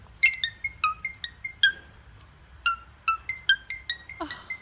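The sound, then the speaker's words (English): A cockatoo mimics an iPhone ringtone, whistling a quick, repeating melody of short, bright, pinging notes, clear. A rougher squawk-like burst comes near the end, and no one talks. “This guy's cockatoo can impersonate an iPhone.”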